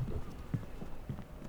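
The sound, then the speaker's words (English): Boots of a man stalking off along a wooden pier, a handful of hollow, low thudding steps at an uneven, unhurried pace, fairly quiet with no voices. “He turned and stalked off, boots echoing hollowly on the wooden pier.”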